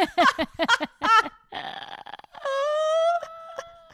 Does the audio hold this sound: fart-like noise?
yes